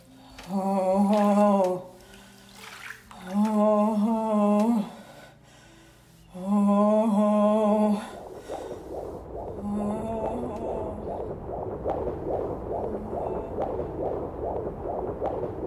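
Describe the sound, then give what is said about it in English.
A fetal heartbeat on a doppler monitor: fast, steady whooshing pulses that fill the second half, preceded by three long, loud, buzzing harmonic tones. No one speaks. “The baby's heartbeat is right where it should be.”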